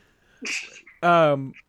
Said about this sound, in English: Hold on. I'm going to sneeze. Give me 1 second.